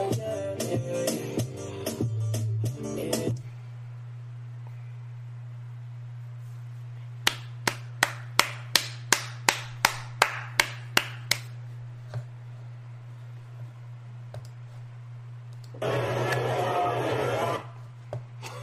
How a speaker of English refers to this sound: Was like a crowd like clapping. I don't have a crowd clapping.